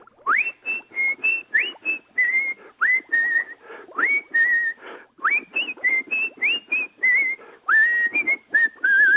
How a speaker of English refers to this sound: Hold on, that's not Larry, that's you. Stop whistling, sir. Oh my God. Did you hear that big finish there? He got really high, dragged out that last note there.